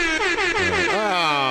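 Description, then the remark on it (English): A loud, blaring air horn blast held continuously for about a second and a half, brassy and harsh with a slightly wavering pitch, with no voices. “There we go. The air horn is there.”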